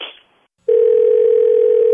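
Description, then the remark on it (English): A short burst of noise, a moment of silence, then a steady, loud telephone ringing tone as a call is placed to call a woman back, holding continuously to the end with no voices. “So let's have you call her back and she'll probably call you out on it, okay?”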